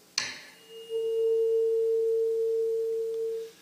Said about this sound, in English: He grabbed his tuning fork and he banged it.